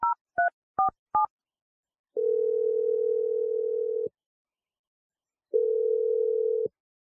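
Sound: telephone dial tone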